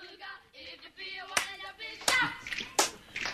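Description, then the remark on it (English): Three sharp hand claps land at a steady, evenly spaced beat, clapping along on beats one and three, cutting cleanly through ongoing melodic voices that continue underneath. “You're clapping on the 1 and 3,”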